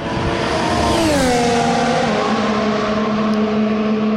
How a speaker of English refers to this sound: Hello from the preseason shakedown in Barcelona. I'm in the pit lane, and the noise you've just heard is Lewis Hamilton zipping past the pits in his all-new Silver Arrow, the car that he hopes will take him to an eighth world title this season.